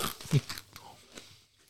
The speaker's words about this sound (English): I'm sorry for the chewing